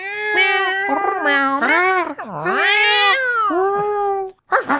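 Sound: angry cat yowling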